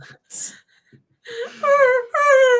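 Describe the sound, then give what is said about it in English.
A person mimics a big black dog whimpering in a corner of a backyard: a breathy sniff, then two drawn-out, high-pitched whining cries that sag slightly in pitch, fairly loud, with no other talk. “It was his backyard, and he made sure this big black dog was whimpering in a corner, and he was. He cried.”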